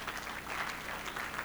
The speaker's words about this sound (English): All those who are clapping, heaven has remembered you.